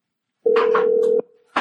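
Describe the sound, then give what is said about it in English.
A steady telephone dial tone hums for under a second, with a few quick keypress tones over it as a surprise phone call to Joe Laurinaitis is dialed, then cuts off abruptly before another short burst of sound. “we're going to make our second surprise phone call”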